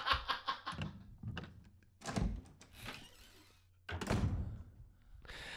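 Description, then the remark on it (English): A door opening effect: a quick rattling of the latch, then several heavy wooden thunks and a creaking swing, fairly loud, with no voices. “Door on the right will lead you to development.”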